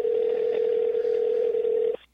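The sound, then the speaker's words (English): A phone's outgoing ringing tone while calling someone: one steady electronic buzzing tone that holds for about two seconds, then cuts off abruptly. It is clear, with no voices. “This is the professional way to do it, you know, with the ringing in the background.”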